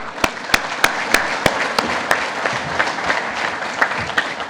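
A crowd applauds steadily, a dense, continuous patter of many hands, with several sharper, louder claps repeating at an even rhythm above the mass throughout.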